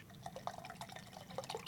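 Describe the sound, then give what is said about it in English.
Beer pours steadily into a glass tilted at 45 degrees, a soft stream of bubbly glugs and trickles that keeps going without a break. Nobody speaks. “But then when I get there, I'm going to go just a hard top pour.”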